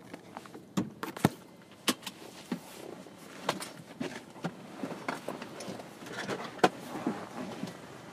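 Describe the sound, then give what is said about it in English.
A truck's hood latch is released and the hood popped open, with several sharp metallic clicks and clunks scattered over handling rustle and light background noise. “You want me to pop my truck?”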